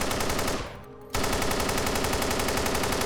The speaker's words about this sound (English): Machine guns were fired from a second-story window, which were answered by more gunfire from the agents.